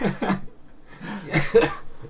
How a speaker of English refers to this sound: This is what I'm worried about. That when I laughed, I would start the coughing. This is what I was worried about.